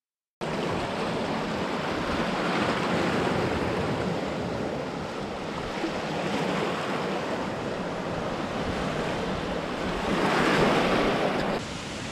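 Wind rushing and whistling through trees outdoors, with leaves bowing back and forth, on a day that is not warm or sunny: a steady, full-bodied roar that rises and falls gently in gusts and swells a little stronger near the end. No one speaks.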